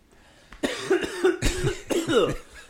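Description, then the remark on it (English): A person coughs in a smoky kitchen in a rapid, rough fit of about five or six harsh hacks, fairly loud, with no talking in between. “Why are you coughing?”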